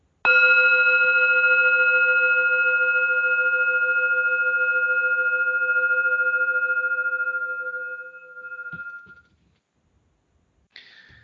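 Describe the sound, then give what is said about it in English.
A gong is struck once, loud, its shimmering metallic tone ringing out for several seconds before fading, followed by a couple of faint handling noises. “I'm going to gong. Then I will read it.”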